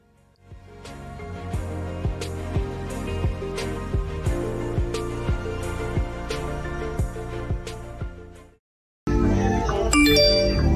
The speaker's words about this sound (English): It's my phone.